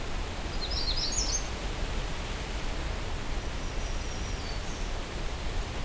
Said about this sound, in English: Magnolia warblers don't have lengthy songs.